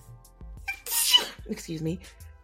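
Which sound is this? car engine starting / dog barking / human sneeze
human sneeze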